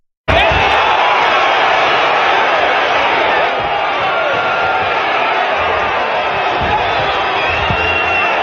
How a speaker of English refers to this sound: So it's just all you could hear on audio is just a whole bunch of cheering, but one dude, like, rock the other dude.